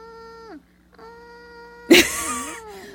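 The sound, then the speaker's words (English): A woman makes thin, whimpering squeaks, then lets out a short, weak roar in imitation of a newborn lion, a brief raspy burst that trails off into a whiny tone. “That is like a newborn lion. Like her first roar was like kind of like a toddler lion that's like starting to feel himself.”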